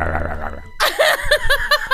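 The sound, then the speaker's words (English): Someone imitates George Washington's wooden teeth chattering with their mouth, making a quick, steady run of clacking, gurgly bursts, right after a low buzzing vocal rumble. “He's chattering his wooden teeth together.”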